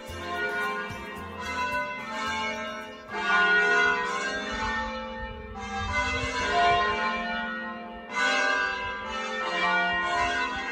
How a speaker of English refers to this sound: and also it just has this fantastic church spire and that lovely melody sound of the church bells ringing all day long, which I'm certain I'm never going to get sick of.